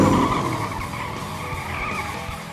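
Loud racing engines roar together as tires skid and screech across pavement, a dense continuous burst of motor noise and rubber squeal lasting a few seconds with no talking, as racers start their engines on race day.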